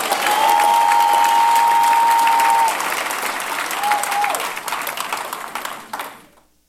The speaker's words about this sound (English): If you understand, clap for Jesus.